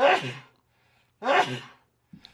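Two loud sneezes, each a sharp burst fading out, separated by a brief pause, with a faint rustle just after.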